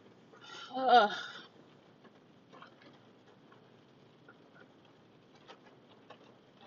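Light rain pattering on a parked car, scattered soft irregular taps continuing quietly throughout, with a brief louder vocal sound near the start.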